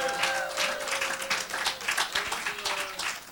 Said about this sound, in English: Come on, clap your hands for the King of Glory. Clap your hands for the King of Glory. Come on, clap your hands.